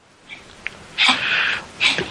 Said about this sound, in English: All right, now I got another dog coughing his head off.